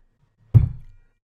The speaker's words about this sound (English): You slammed your leg against the table. Are you okay? Kicked the leg of the coffee table as hard as I possibly could, so that hurt.